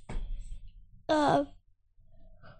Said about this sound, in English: Oh, yawns. Those are contagious, man.